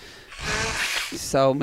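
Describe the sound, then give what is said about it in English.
A breathy nose blow rushes out for about a second, noisy and slightly honking, then a short voiced sound follows right after. “So many bodily I'm functions. I'm blowing my nose.”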